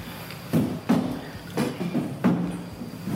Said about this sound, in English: I am gonna move the chair back, though, to the wall.